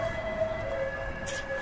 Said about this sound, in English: Don't worry, the ambulance is following us.